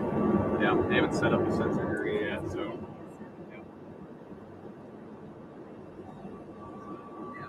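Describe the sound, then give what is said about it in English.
A steady, loud low roar of engine drone inside the cabin of a Boeing 707 flying office in flight over Polish airspace near the Belarusian and Ukrainian border, with indistinct voices and clatter over it during the first few seconds before it continues alone. “So we're on board a Boeing 707 and it's not exactly a passenger plane.”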